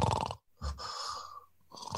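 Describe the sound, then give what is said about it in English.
A person with a dental mouthpiece in imitates a soft, small snore: a few short, breathy, nasal snorts in a quick rhythm, fairly quiet, with no one talking. “You have like a mouse sleeping in a matchbox snore.”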